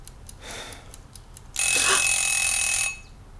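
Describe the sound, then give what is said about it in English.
A mechanical egg timer ticks in a quick, steady rhythm, then its bell bursts into a loud, rattling ring for just over a second before cutting off. “It's an egg timer. It's not exact.”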